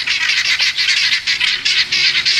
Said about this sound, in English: They're under my carport. It's making their guinea hen noise. And I decided that it was time for them to stop with their guinea hen noise.